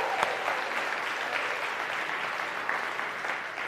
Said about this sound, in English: Good job. Let's clap it out all over this.